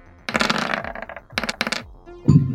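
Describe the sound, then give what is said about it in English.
Dice clatter and rattle across a hard tabletop in a few quick bursts of clicks, fairly loud, ending with a brief low knock as they settle, landing on a roll of 17. “Ooh, you did. 17 on the dice. That's a hit.”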